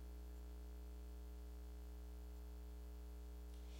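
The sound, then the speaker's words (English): A steady, low electrical hum drones on without a break, a faint mains buzz with a thin layer of static hiss on top, from the back of the room during an Easter sermon. No voices or other sounds. “There was like the humming went away in the back.”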